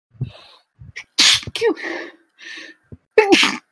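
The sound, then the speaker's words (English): Two loud sneezes a couple of seconds apart, each a sharp explosive burst, with short breathy inhales and noisy exhales around them and no talking. “Gesundheit.”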